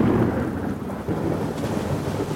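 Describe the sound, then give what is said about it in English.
A thunderstorm rumbles with deep, continuous thunder beneath a steady wash of rain, loud and sustained throughout with no voices present. “Stories about shipwrecks often start in the same way, with a storm.”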